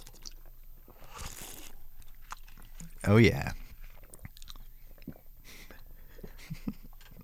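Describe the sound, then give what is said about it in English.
A single loud slurp of cereal milk from a bowl bursts out partway through, surrounded by quieter mouth and chewing noises, with a brief spoken remark. “The milk is that's like the best part. Should we just like do a slurpy one?”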